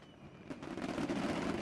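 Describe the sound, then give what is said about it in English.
A New Year's fireworks sound effect: fireworks crackle and pop in a dense, continuous barrage that swells after a brief quieter start, with a low rumbling undertone and no voices. “So can we have a fireworks real quick?”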